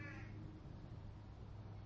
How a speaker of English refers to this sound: Oh, there's a bird friend.